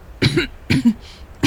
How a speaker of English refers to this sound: "After that," she stopped to clear her throat.